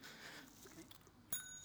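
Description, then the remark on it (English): A single bright bell ding strikes near the end in a church and keeps ringing with a clear, shimmering tone over a quiet hiss. “You've got a bell.”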